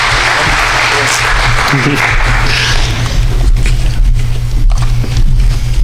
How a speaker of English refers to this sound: Church, can we give them some applause, please? We love our families.